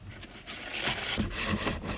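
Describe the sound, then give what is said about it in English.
Paper rustles and crinkles in a steady run of soft, scratchy bursts, with a brighter crackle near the middle as the sheets are shuffled. No one speaks. “Sorry, paper's a bit of a mess here.”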